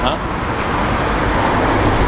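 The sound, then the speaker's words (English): A steady, loud wash of road traffic under the railway bridge outside Loughborough Station, near Herne Hill Road. Cars rumble past continuously with a broad low roar and a slight echo, with a murmur of voices mixed in. “We're now going under the railway bridge.”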